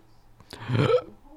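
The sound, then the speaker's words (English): A single loud burp made with the microphone at the lips, short and throaty with a rough, gurgling edge, swelling and cutting off after about half a second, with no talking around it. “The mic was on my lips as I burped that one into the audience.”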